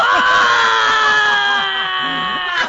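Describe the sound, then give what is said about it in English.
A person lets out a loud, sustained yell right up close to the microphone, holding one strained pitch for a few seconds with no other talking. “Oh, and you're yeah, yelling yeah. in the mic.”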